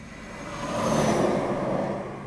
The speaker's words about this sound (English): Oh, there's gonna be a real loud truck coming by super soon.